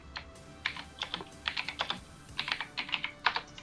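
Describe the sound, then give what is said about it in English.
Rapid, loud clicking of computer keyboard keys, with quick bursts of keystrokes in an uneven rhythm, with no voices. “God, that sounds like a typewriter.”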